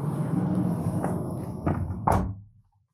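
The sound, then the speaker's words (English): The door of an apartment in the French Alps swings shut over a low rumbling background: a couple of soft knocks, then a louder solid thud as it closes. The sound fades quickly to silence. “Ooh, it would be a good idea to close this door.”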